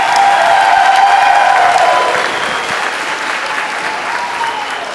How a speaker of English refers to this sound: So let's give them a round of applause before we get started. They've done a great job this year.